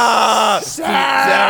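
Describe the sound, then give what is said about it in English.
Loud, exaggerated moaning: two strained, drawn-out groans with sliding pitch, separated by a brief breathy gap. “You're going to be moaning? It's heavy breathing.”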